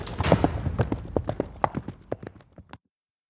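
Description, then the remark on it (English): Horse hooves clip-clopping in a quick, steady rhythm of sharp knocks, starting loud, then growing fainter and more spaced before stopping abruptly. “Get to the horses!”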